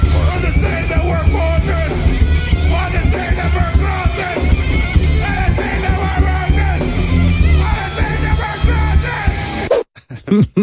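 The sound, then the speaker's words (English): Eric Andre yells and screams loudly while singing on stage at a birthday party over blaring rock music, his voice raw and strained throughout, before the sound cuts out abruptly near the end. “The singing was more like screaming, especially when he didn't know the words.”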